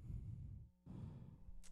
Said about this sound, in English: Sorry, I'm breathing really heavily into this mic because I'm so nervous.